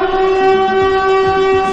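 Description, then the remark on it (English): A loud storm warning siren holds a steady, droning wail with a rich, buzzy tone, sounding continuously without any rise or fall, and no voices over it. “Uh-oh, it's the lookout siren.”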